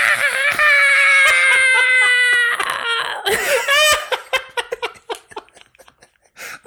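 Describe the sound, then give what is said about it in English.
A person lets out a long, loud, high-pitched screeching yell in imitation of a Tyrannosaurus rex roar; it wavers and cracks, then breaks into short breathy bursts, like scattered laughter, that fade out. “I asked for a Tyrannosaurus Rex yell, not Jack Black screaming.”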